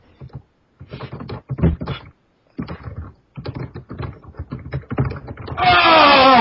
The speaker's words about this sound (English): Crazy typing. It picked up sound.